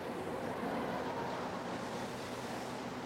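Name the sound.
rain falling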